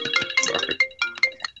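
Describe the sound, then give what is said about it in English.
A phone ringtone chimes out in a quick melodic run of bright electronic tones, fairly loud, ending in a few spaced notes before cutting off. No one speaks. “I got both you guys going with phones?”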